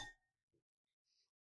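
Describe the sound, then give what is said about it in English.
A sharp clink of glass on glass in a toast, with a short ringing tone, followed by a soft knock and a brief faint high chime about a second later. No one speaks. “Oh, that deserves a cheers.”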